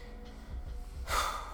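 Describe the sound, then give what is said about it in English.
A deep breath drawn in through the mouth by a person with a stuffy nose who is not breathing through the nose, followed by a short, harsh, congested sniff at the end. Quiet, with no talking. “I'm also taking deep breaths because I'm not, like, breathing through my nose right now.”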